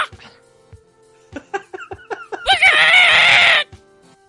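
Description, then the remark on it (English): A human voice mimics a rooster crowing: a run of short clucking syllables building into one loud, strained, drawn-out cry of about a second, then silence. “But I mean, roosters don't really sound like that.”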